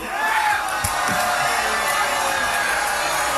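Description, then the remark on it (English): A live audience reacts to a stated unpopular opinion with a mixed wash of groans and cheers, a dense, steady crowd roar with scattered shouts and whoops lasting a few seconds. “Mixed response from the crowd.”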